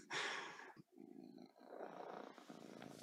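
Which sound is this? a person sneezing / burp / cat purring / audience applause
cat purring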